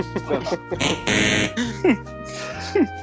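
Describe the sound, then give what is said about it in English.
A quiz timer's harsh buzzer blares loudly for about half a second, marking the end of a 7-minute quiz round, sounding among voices that talk and exclaim before and after it. “That's the timer up for the 7 minutes that we had.”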